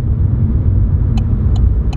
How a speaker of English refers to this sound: This car is a 6.2-liter supercharged engine. Wouldn't it be nice to feed that power?